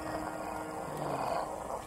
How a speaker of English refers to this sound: Oh, the fishermen's dogs.